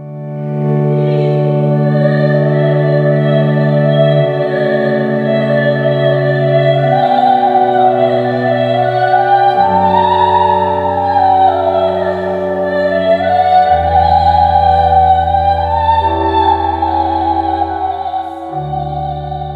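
A soprano spins out one long, drawn-out melismatic line over sustained organ chords and trumpet, the bass notes stepping down slowly beneath, full and resonant with no speaking.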